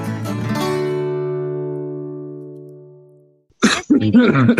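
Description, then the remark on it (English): A short cough bursts out, blending into a lingering tone that slowly fades over a few seconds, before a person starts talking. “That wasn't even deliberate. I just coughed.”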